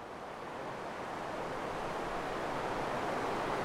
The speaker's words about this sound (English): The river air. Can you feel the power of the water? This weir is all about power.